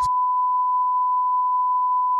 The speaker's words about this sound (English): Should I go and hit the beep button for that? Or are you okay? Should. I should hit the beep button.